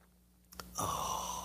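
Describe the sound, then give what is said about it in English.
A short clink or tap, then a sustained airy slurp of someone sipping coffee, with a faint whistling tone running through it until the end. “And now the simultaneous sip.”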